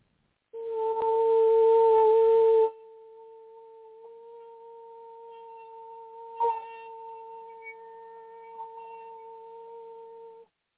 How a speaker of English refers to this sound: All right, I'm supposed to hear one more tone.